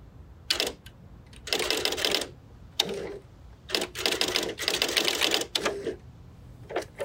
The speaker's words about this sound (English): This typewriter sounds a little bit different than like a really old-fashioned fancy one.